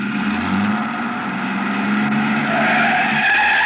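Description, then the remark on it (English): A man gets into a truck, starts the engine and switches on the lights; the truck's tires skid and screech loudly over a steady engine roar, the squeal rising toward the end. No one speaks. “I started back toward the street when a man, a much larger man than Dupas, came out the side door and got into the truck. He turned over the engine and switched on the lights before I could get clear.”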